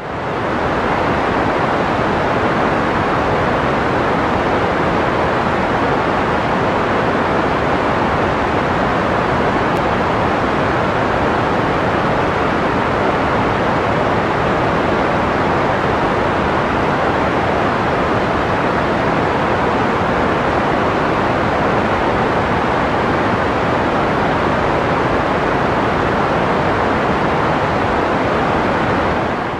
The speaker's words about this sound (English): So what does Pink Noise sound like, ladies and gents? Have a little 30-second listen to it now.